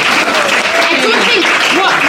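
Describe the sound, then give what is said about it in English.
A steady, dense round of applause from many hands for Nutcraft, maker of the smoked and spicy flavoured spreads being tasted. It is loud and continuous throughout, with faint voices and cheering mixed into the clapping. “I think, can we have a round of applause for Nutcraft there?”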